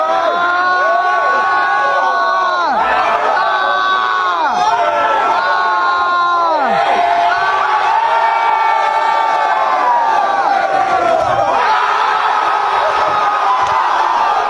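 Students erupt in loud, wild cheering and screaming after a college student rapidly guzzles water, with high-pitched shrieks and whoops rising and falling continuously for about fifteen seconds.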